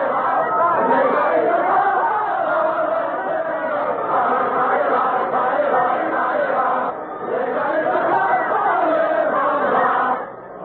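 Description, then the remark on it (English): A large crowd sings the French revolutionary song "Ça Ira", an old French dance set to revolutionary words about hanging all aristocrats from lanterns. They sing together in unison, loud, the massed voices swelling in rhythmic phrases with a brief dip midway before surging again. “It's Ça Ira, an old French dance to which revolutionary words have been set. They're singing about hanging all aristocrats from lanterns.”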